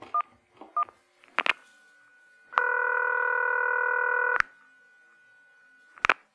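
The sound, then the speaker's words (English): Short electronic keypad beeps of a phone being dialed to call a pizza shop, followed by a steady tone lasting about two seconds, then a few more clicks and beeps. No voices. “Now, call a pizza shop and the employee will answer.”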